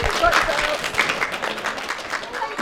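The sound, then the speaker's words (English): A live audience applauds steadily at the end of an interview in a lounge, many hands clapping in a dense, even wash of noise with a few brief cheers or voices mixed in, staying fairly loud throughout. “And round of applause, everybody.”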